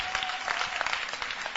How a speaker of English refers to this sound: Please, I want us to clap properly.